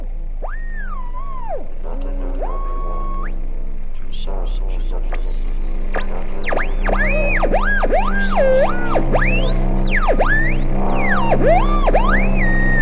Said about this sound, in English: Shh! Listen. There's a voice hidden in the static.